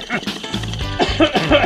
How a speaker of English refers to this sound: Dude, why do you keep putting the bong bubbles underneath my voice when I cough? You did that all last episode.